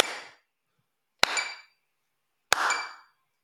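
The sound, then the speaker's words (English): Three sharp hand claps land at a steady, even pace, each one trailed by a bright, ringing metronome click that sounds just after it, demonstrating how beginners clap quarter notes ahead of the beat. No one speaks. “And then, so now I'm going to clap, and if I can hear the metronome, I'm doing it wrong.”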